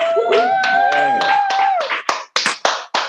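People clap in a quick, steady rhythm of sharp bursts, while a voice cheers over the first half. The applause grows more spaced and choppy toward the end.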